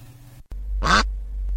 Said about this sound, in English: A duck's quack doesn't echo, says the guy at the pub.